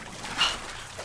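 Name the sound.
water trickling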